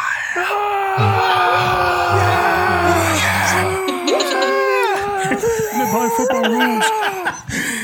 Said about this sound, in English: You hear some cheering coming from the east side of where you are.